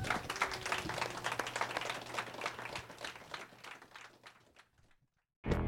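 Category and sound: crowd, audience round of applause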